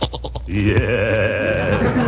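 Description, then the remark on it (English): A goat in a temporary goat pen lets out a single loud, quavering bleat, starting with a few quick stuttering pulses and then stretching into a long, wavering cry that lasts about two seconds. “There we are, Leroy. And there you are, Mr. Goat.”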